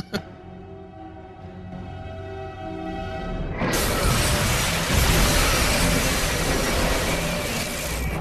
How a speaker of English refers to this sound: Explosion's so loud, it can be heard in a vacuum of space. Yeah, and they went back to Rainmaker and says, bigger explosions, we want to see the ship explode.